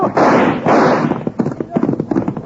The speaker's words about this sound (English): Did you see that? Cut the rope with his first shot.